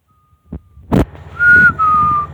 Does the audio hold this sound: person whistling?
yes